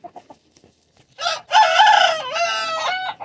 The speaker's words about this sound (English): El pollo negro como esa en Asia es como la medicina.